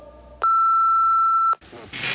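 A single steady, loud electronic answering machine beep holds for about a second before cutting off into a brief hiss of line noise.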